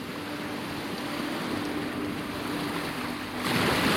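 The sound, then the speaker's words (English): Ocean water washes and laps steadily around swimmers in an open patch of ocean near kelp, the water nearly 15 feet deep, a continuous hiss of surf with a louder swell rising near the end. No voices are heard. “We reach an open patch of ocean, the water nearly 15 feet deep.”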